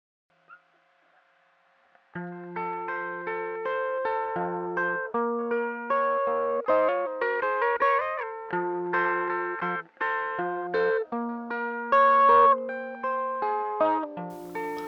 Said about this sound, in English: the instruments cut away and we're left with an arpeggiated guitar that utilizes some hammer-ons and pull-offs.